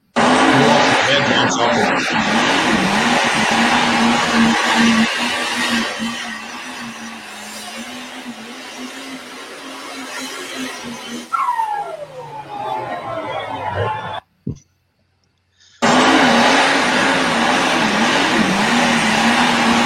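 A diesel pulling tractor, recorded on the second night at Dodge City, roars loudly and steadily, its engine note wavering as it strains, then briefly drops away into near silence before the roar returns at full force.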